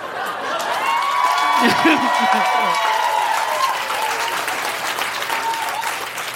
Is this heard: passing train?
no